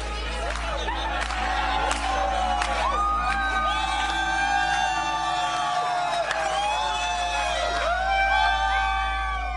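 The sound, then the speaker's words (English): A large crowd at a revival prayer and worship meeting screams and whoops together, many high voices overlapping in loud, rising and falling wails that carry on without pause, with a constant low hum beneath. “It featured laughing fits and shaking and screaming and crying and extra long prayer and worship meetings”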